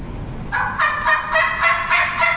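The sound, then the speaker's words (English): An imitated wild turkey gobble, the response a turkey gives when a caller calls it, a loud, rapid rattling burst of throaty notes lasting about two seconds, with no talking. “He gobbles.”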